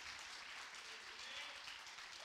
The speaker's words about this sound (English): Praise the Lord. Clap your hands as a church and thank God for His word.